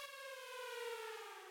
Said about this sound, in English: Do you hear the siren? It tears to pieces the silence.